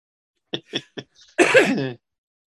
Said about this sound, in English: cannot stop sneezing over there.